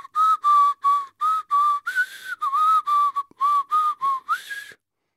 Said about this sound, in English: Let me get my whistle.